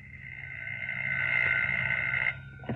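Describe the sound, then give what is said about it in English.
A telephone in a flat in a new block behind Portland Place, England, rings at about 10 o'clock at night with one long, steady, high-pitched trilling tone that lasts about two seconds, then cuts off, followed by a brief clatter. No one speaks. “As I came up the stairs, I heard my phone ringing.”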